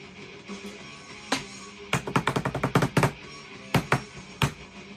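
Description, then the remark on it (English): Sharp knocks tapped on a desk as an improvised drum roll: a few scattered hits, then a quick uneven flurry, followed by a couple of final louder knocks. No talking. “So, shitty drum roll.”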